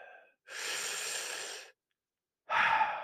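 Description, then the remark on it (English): Slow, deep breaths drawn by a person trying to get over hiccups: a long, airy breath lasting over a second, a brief silence, then another heavy breath starting. No one speaks. “Sorry, I got the hiccups right now, guys. I'm just trying to breathe. Deep breaths.”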